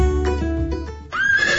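A horse whinnies loudly, a single drawn-out neigh with a shrill, wavering rise toward the end, heard alone without any talking.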